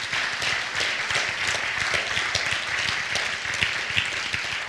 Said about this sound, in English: Can you clap your hands and thank the Lord for that?